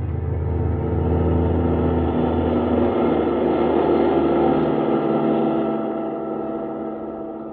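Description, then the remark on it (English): A car drives along with a steady, rumbling engine drone that stays loud throughout, easing off slightly near the end. No one speaks. “Kismine in the car that needed no roads.”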